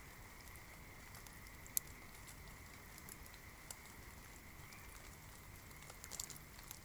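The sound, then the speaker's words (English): Very light rain pattering on salal leaves in the Ho rainforest: a few scattered, soft drop ticks over a steady, hushed wash of background noise. Quiet and calm throughout, with no voices. “very light rain on the salal leaves.”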